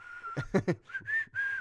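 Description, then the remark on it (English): A person whistles the opening melody of a song, a short melodic phrase with steady sustained notes broken by a few quick breathy puffs in the middle, slightly wavering and a bit airy. “Can't whistle very good, but that's how it starts off.”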